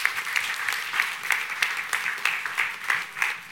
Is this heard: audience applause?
yes